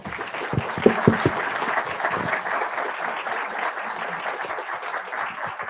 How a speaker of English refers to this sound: Thank you so much for being here. Join me for one more round of applause.